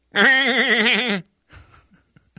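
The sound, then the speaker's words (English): A person imitates a sheep or goat with one loud, sustained, quavering bleat lasting about a second, its wavering pitch trembling throughout, followed by a few soft breathy sounds and faint clicks; given as an impression of Peter Griffin from Family Guy. “And I wasn't sure if you were impersonating a Republican politician or if it was a sheep or a goat.”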